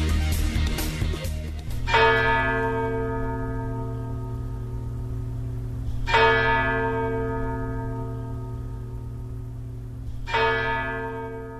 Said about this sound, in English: The bells in Kyiv rang out early this morning because 1 year ago, the first Russian missiles struck Ukraine.